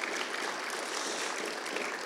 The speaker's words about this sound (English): You have a phenomenal team. You have a fantastic team. Let's give them one good hand clap of appreciation.